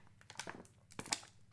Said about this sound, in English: Sorry if you can hear my water bottle. I'm really, really thirsty right now. By the way, I'm drinking Kroger natural spring water.